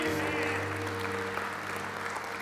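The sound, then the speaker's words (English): An audience at a religious service claps in praise right after a prayer receiving Jesus as Lord and Savior, a dense, steady wash of applause that holds at full loudness throughout, with a low sustained tone humming underneath. “Come on, give him a hand, clap of praise in this house.”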